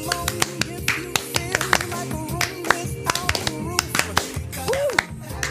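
Sharp, rhythmic claps or snaps land on a steady beat, cutting through a busy musical backdrop with a sliding tone near the end.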